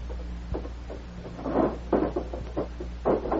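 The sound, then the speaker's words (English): The bottom drawer of a wooden chest is pulled open in a series of short scraping, rattling bursts, over a steady low hum, with no one speaking. “Bottom drawer of the chest over there.”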